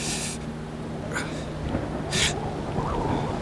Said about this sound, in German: Verdammt, ein Unwetter zieht auf. Das hat uns gerade noch gefehlt.